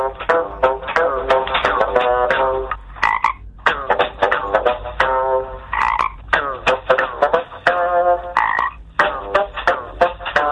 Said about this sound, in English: Would you like to hear a frog playing the bassoon? Of course I would. Here we go.